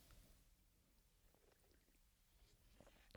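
Quiet mouth sounds of someone sipping warm golden milk, with soft wet slurps and small swallowing clicks against a near-silent background, ending in a slightly louder sip.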